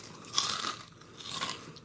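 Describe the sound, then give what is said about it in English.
Crisp crunching on Bugles corn snack chips in two bursts of chewing, bright and crackly, with a short pause between; no talking. “I got bugles. You got bugles?”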